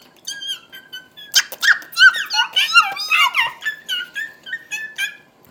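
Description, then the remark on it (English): A child's voice imitates a mouse with a rapid series of high-pitched squeaks and squeals, repeated in short bursts for several seconds with no other talking. “How about a mouse? What does a mouse sound like?”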